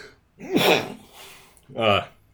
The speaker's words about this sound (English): hang on, sneeze.